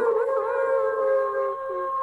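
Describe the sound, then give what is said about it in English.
A long, steady wolf howl holds a sustained, slightly wavering tone for about two seconds, fairly loud, with no talking over it. “Was a did you cue that wolf howl?”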